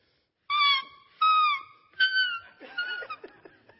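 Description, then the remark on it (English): A coyote call: three loud, high, wavering howl-like notes in quick succession, followed by a burst of shorter choppy yips and yelps, with no talking over it. “Yeah, that is a coyote call.”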